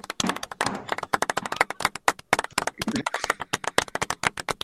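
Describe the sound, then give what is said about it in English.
A crowd breaks into applause, dense rapid clapping from many hands that rises and falls in bursts, fairly loud, with no one speaking. “Why does that get applause?”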